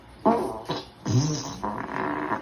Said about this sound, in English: 5 farts coming your way.